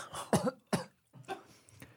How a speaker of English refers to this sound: God, making me cough again.